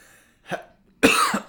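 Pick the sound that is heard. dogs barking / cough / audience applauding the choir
cough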